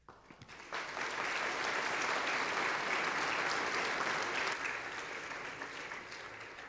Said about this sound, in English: As I've said a few times now, you guys don't even know what you're clapping for yet.